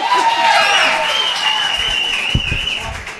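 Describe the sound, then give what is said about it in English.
An audience at a live show applauds steadily for a few seconds for the hosts' dad after his appearance, a dense wash of clapping with a few cheers and whistles rising above it, fading slightly toward the end. “Round of applause for our dad.”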